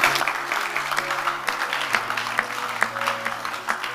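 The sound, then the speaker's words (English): A crowd claps for Jesus steadily and densely for several seconds, a continuous wash of hand claps with a low sustained hum or organ tone underneath. “Clap for Jesus.”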